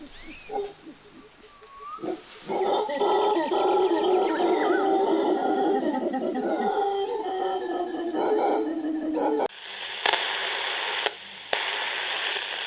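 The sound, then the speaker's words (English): A loud, dense chorus of monkeys howling and screeching, many overlapping wavering calls close by, breaking off abruptly into a steady, static-like hiss for the last few seconds. “those monkeys are getting really close, so I gotta go”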